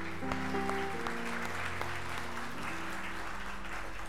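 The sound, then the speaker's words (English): An audience claps steadily for about four seconds, a dense, even wash of many hands, with sustained low instrumental tones underneath and no voices. “You guys give Richie and Diane a big hand.”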